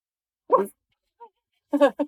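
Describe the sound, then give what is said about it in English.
A woman imitates a dog barking: one short, loud woof, a pause, then a quick pair of barks, with no other sound around them. “I'm the cat, she's the dog.”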